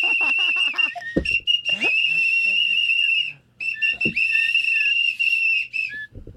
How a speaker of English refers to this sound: Oh, my God. They all have whistles.